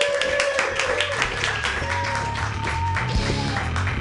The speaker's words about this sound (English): You guys, clap it up for your first comedian of the night.